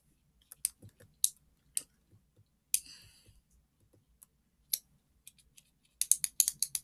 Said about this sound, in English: Sorry for clicking my pen.